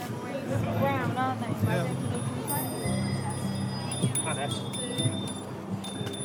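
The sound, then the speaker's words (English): Many bicycle bells ring over and over at a protest, rung by dozens of people standing in a long row outside conference grounds next to the security check-in; their bright, high metallic tones overlap into a steady shimmering clamor, while a crowd murmurs and talks underneath. “Dozens of people standing in a long row, ringing the bells on their bikes.”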